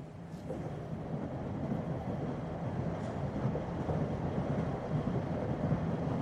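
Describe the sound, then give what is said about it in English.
A train carrying painter Agnes Pelton rolls steadily along the tracks across America through the prairies of Kansas, with a continuous low, rumbling clatter at an even, moderate level throughout, and no voices. “Agnes is silently watching the geography of America changing in the silver-framed train car window, her hands folded in her lap.”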